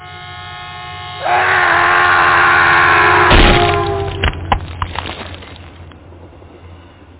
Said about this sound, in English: We're going to hear the train hit the guy.